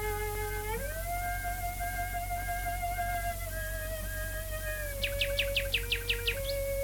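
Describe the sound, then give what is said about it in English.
A nightingale sings at night in a back garden south of London, a quick run of about eight sharp, repeated chirping notes near the end, over a cello's sustained, bowed notes improvised with it, broadcast live in May 1924 over a mile of cable to the telephone exchange, with a steady low hum throughout and no talking. “Where a mile of cable linking up to the telephone exchange brought the song of the nightingale singing that night with her on her cello, improvising and playing some pieces.”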